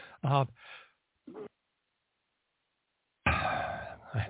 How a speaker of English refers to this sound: All of a sudden, my body decided it wanted to have a sneezing fit, but I don't have time for that.